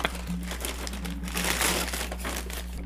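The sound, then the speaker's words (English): A paper gift bag crinkles and rustles as it is opened, a steady run of dry crackling that swells briefly louder midway, over a low constant hum with no talking. “There's no glitter on the damn bag, man.”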